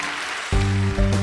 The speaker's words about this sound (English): In Jesus' name, give the Lord a clap offering.